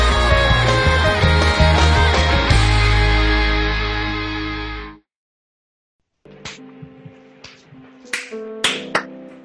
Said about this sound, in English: When you all do the claps, it defeats the purpose.